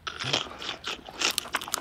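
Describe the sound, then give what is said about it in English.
Crisp crunching from someone chewing chips, a quick series of brittle bites and grinding chews with sharp bursts near the end, no talking. “I know the crunching is driving you crazy, but we got like...”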